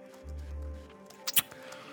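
Wet chewing of tobacco: a few sharp, smacking clicks and soft squishy sounds over a low hum, with no voices.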